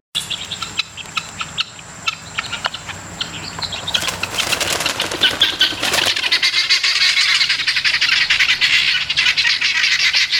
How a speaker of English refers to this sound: These are kind of out in a park. This audio is guinea hens out in a park.